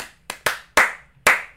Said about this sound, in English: Oh, they got you to give them 5 slaps of that. I think it was like 8, according to that. I think they actually tricked you into giving him 7 claps.